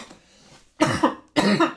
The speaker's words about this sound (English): Bless you. Oh, I didn't sneeze. But... Oh, 不能吗? I was dying. 你不能说 bless you. Not for coughs.